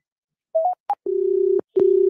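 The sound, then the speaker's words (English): A telephone line gives off glitchy tones: a few short beeps at shifting pitches, then a steady hum that cuts out briefly and resumes, like a faulty connection. No voices. “The phone was messed up, too.”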